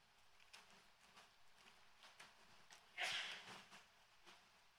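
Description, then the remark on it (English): A single sharp sneeze bursts out about three seconds in, breathy and fairly loud, then fades quickly against a quiet background with faint scattered taps and shuffles. “Revelation 19, whoever that was, God bless you.”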